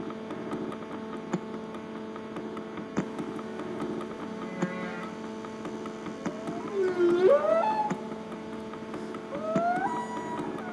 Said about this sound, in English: Let's get the whales in here.